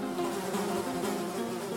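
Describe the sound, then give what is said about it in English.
A dense, steady drone of many fruit flies buzzing at once in hundreds of milk bottles on shelves in a tiny laboratory fly room, a continuous whining hum that fills the space without pause, even in loudness, with no voices. “The tiny fly room contained hundreds of these bottles on shelves, all buzzing madly.”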